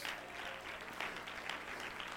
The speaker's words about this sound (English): Somebody clap your hands and shout.